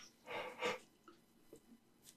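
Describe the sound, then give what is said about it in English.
A person yawns with a long, breathy exhale that swells and fades, followed by a few faint mouth and breath noises. It's quiet, with no talking. “Excuse me, I'm yawning.”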